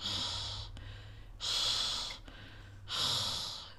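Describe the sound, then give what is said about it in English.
Airy cat breathing with no talking as the cat sits on a person's lap: three slow, even breaths drawn in and out, each a soft rushing hiss with a steady rhythm and brief quiet gaps between. “I don't know if the microphone is going to pick up the cat just breathing, because she's sitting on Kiyomi's lap”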